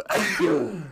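One loud sneeze bursts out abruptly and tails off over about a second, with a breathy, voiced quality. No one speaks.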